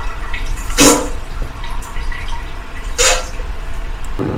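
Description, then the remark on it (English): A sound machine plays a running water sound: steady running water hisses throughout, with two brief louder splashing surges about two seconds apart and no voices. “Simply hook up to child under 6 or psychopath and wait for the running water sound.”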